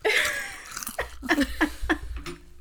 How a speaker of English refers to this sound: But I try to eat far away because I'd be munching on things too and I'd be like.